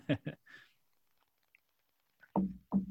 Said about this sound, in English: A little bit of scotch, no worries. Better have one more sip then.